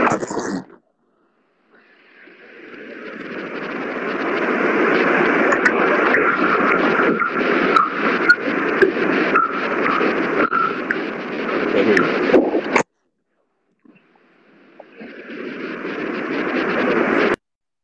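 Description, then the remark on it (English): Loud, steady hiss of static from a breaking-up video call connection, swelling in, crackling with brief glitches, then cutting out to near silence before the noisy rush returns. “I can't hear you.”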